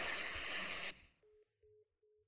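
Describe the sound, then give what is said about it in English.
A loud rush of static cuts off abruptly, followed by three short, evenly spaced electronic tones from a phone line as a call is placed to a man, the call signal beeping on its own. “Let's see if he'll pick up the phone.”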